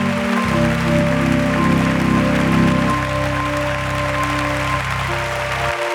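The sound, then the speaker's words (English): A large crowd applauds steadily for about six seconds at a Worldwide Pentecostal Fellowship conference, dense clapping filling the sanctuary while sustained organ-like chords hold underneath. “And I want you to honor them today with a hand clap and let them know how appreciative you are of them.”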